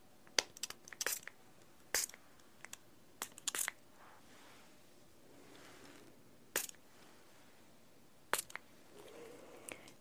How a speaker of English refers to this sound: I'm going to try and just apply a little bit of water, a little perfumed water spray.